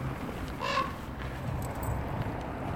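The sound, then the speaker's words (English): A single harsh caw from a big raven rings out briefly over a steady outdoor background hiss, followed by quiet ambient noise with faint scattered chirps. “the big raven.”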